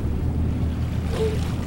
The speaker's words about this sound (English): All right, folks, we're coming to the bay now. Remember, tighten up on those life vests as we enter the water.